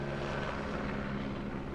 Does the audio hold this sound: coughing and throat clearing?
no